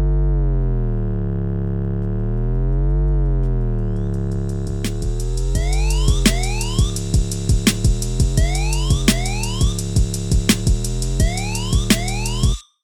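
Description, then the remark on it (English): A wailing, wavering siren tone in a hip-hop track rises and falls over a heavy beat, joined partway through by a new pattern of punchy drums and a slow, deep sliding bass line, with no vocals, loud throughout. “Beneath this siren, we hear a new drum pattern, which is joined by my favorite element of the track, a slow sliding bass line.”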